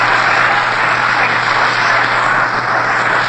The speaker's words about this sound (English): That round of applause is for Carl Hubbell. Carl Hubbell gets a nice round of applause from all of the fans there at the Polo Grounds in New York as he steps up to the plate.